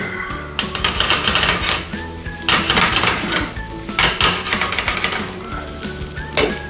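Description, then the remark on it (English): Fried rice seasoned with salt, coriander and pepper sizzles in a hot pan as it is tossed, with several loud rushing, scraping bursts of rice and metal clatter over a steady frying hiss and faint tonal background sounds. “Give that a quick toss.”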